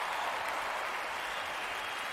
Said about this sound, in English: Applause.